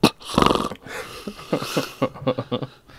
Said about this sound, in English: Asthma. So, asthma or someone sleeping who has asthma. And here, I'll put some plastic in my wife's mouth as she tries to breathe while she snores.